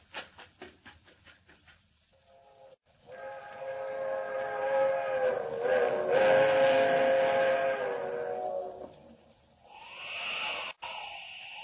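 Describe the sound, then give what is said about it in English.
A fast-travelling train blows its whistle for the highway, a long, loud, steady blast after a few quick rhythmic chuffs, swelling as it approaches, then fading and sounding briefly again. “She's whistling for the highway.”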